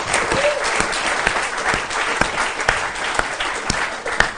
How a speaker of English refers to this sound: And before we give you, I'm sure, a rousing round of applause, please show your appreciation for everyone at the St James's Theatre who's had to work tonight and has made tonight run very smoothly.